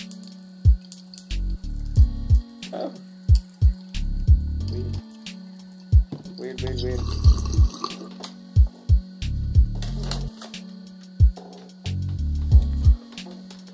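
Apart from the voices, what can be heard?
water bubbling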